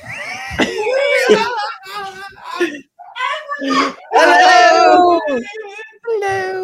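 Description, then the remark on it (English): A person screams and shrieks in several loud, high-pitched bursts, broken by short pauses, with strained vocal cries between them. “Don't scream me.”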